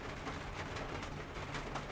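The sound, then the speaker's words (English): Steady, soft rain falls outdoors, a continuous even hiss without distinct drops or pauses, with a faint low rumble beneath and no voices. “Let's just take a moment to hear the rain.”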